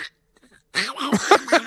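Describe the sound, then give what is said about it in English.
Someone imitates Disney's Donald Duck: a loud burst of raspy, sputtering quack-like gabble lasting about a second, coming in right after a short quiet pause. “Do your Donald for us. Okay, you can make the sound.”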